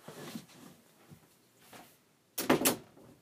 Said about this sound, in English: I had to close that door.